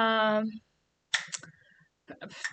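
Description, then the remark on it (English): Sharp clicking from a light comes in two short clusters of crisp taps, following a brief humming voice at the start. “What are those clicking sounds? Do you hear them? It's the light.”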